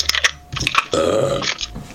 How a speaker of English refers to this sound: Is that your key going in your door? Yeah. Cool, that sounds cool.